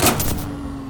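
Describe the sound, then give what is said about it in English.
A vacuum cleaner's motor whirs with a steady low hum and thin high whine as it gets closer, following a brief burst of rough, rushing noise at the start. No voices. “It's a vacuum cleaner! A vacuum cleaner, that's what it is! And it's getting closer.”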